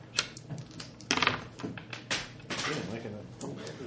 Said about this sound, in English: We just can't keep it on the table. We are liking the floor today. Yeah, we are. You are just making it rain dice.